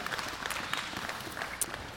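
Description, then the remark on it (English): A standing church audience claps their hands for God at the close of a sermon, a dense, steady wash of many overlapping claps with a few sharper ones standing out, holding an even moderate level throughout. “Yeah, go ahead and give God a hand clap.”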